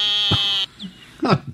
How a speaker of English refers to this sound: And those are green tree frogs calling in the background.